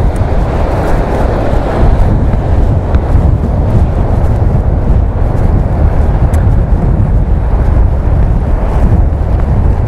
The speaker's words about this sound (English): Ooh, the sea's here.